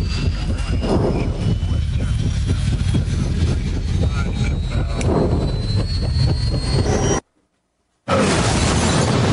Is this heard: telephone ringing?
no